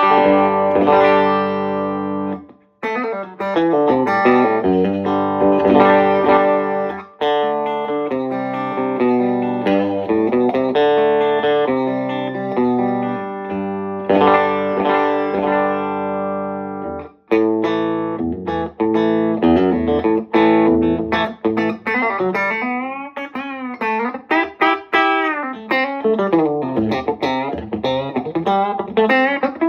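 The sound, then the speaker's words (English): An electric guitar played through the EF-86 channel of a Vox amp with a touch of plate reverb from a Boss RV2, loud, with ringing chords and melodic runs, notes bending toward the end, and no talking. “And I'm, using, of course, the EF-86 channel. And the only effect I'm using a touch of plate reverb off a Boss RV2.”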